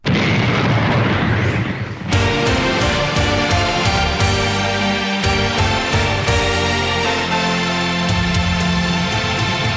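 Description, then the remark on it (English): A loud, rumbling explosion bursts out for about two seconds, then gives way abruptly to a full, loud orchestral-style theme that continues to the end; this is a version of a wrestling theme song with the explosion at the beginning and a longer intro. “Version 3, which has the explosion at the beginning and the longer intro.”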